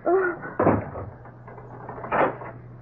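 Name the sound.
closet door being shut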